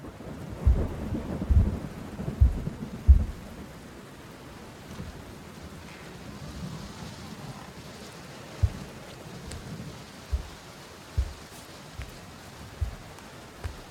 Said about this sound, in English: Then there was a storm.